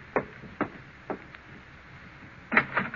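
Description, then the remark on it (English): A front door is opened to let in an expected visitor, with a few sharp, evenly spaced clunks followed by a louder rattling knock of the latch near the end, with no talking. “I'll go to the door.”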